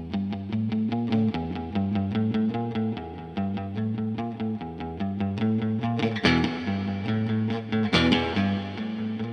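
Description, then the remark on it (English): A vintage Kay 6535 electric guitar played through an amplifier, with steady, rhythmic picked chords and a slightly distorted, effected tone. Fairly loud, with no voices, and a couple of brighter accents near the end. “The Kay 6535”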